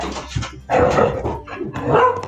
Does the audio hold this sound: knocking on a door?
no